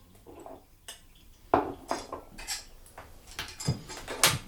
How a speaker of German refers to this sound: Nur eine Geschirrspülmaschine hat die Küche leider nicht. Aber gemeinsam meistern wir den Abwaschen.